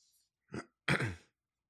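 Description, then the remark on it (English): A person clears their throat into an unmuted microphone, a short gruff rasp followed by a louder, longer one, with no talking around it. “Also, apologies if you hear me clearing my throat at all through this, because I can't mute my mic with my setup right now.”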